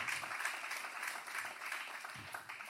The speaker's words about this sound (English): You guys just clap for a little kid getting beat up, but... That's on you.